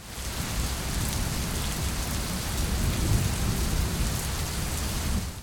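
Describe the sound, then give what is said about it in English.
Steady, heavy summer seasonal rain falls, hissing across surfaces, while a deep rumble of thunder rolls continuously underneath for the full length, with no voices present. “The summer seasonal rains are also beneficial for these slow-moving vegetarian reptiles.”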